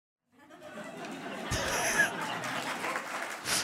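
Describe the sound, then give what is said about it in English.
An audience breaks into applause after a joke, with laughter and chatter mixed in, a dense, steady wash of clapping that swells around the middle and keeps going to the end. “It was a good clap.”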